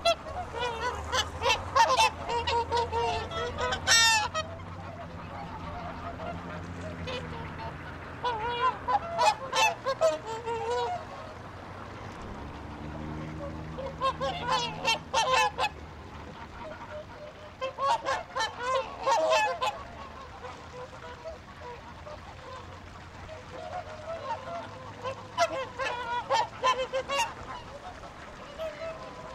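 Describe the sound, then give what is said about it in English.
Geese and ducks honk and call in repeated bursts over about half a minute, clustered outdoors at a city pond in the center of Reykjavik, Iceland, where people come to feed the birds, on a typical morning, with a low steady background rumble and no talking. “In the center of Iceland's capital, Reykjavik, there's a pond where each day young and old alike come to feed the geese, ducks, and assorted fowl that inhabit the waterway.”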